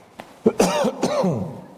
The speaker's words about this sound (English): While I cough.